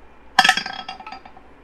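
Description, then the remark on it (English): A die hits a hard tabletop with a sharp clack, then tumbles in a quick, bright run of rattling clicks that grow fainter and sparser before settling. No one speaks. “Come on, this dice is really annoying. This one rolls okay.”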